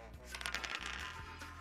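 A continuous rattling clatter of dice rolled across a hard surface for a second and a half, a dense run of small clicks over a steady low hum.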